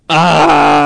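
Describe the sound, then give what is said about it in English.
A person screams loudly into a microphone, one sustained, strained vocal wail holding a steady pitch for nearly a second after an abrupt start, with no words spoken. “One of us was screaming into the mic.”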